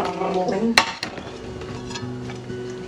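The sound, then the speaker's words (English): Dishes and a food container are handled in a kitchen as a meal is put into the microwave, with a couple of sharp clacks and knocks over a steady low hum and soft background clatter. “Alright, so now I just get this, put it in the microwave.”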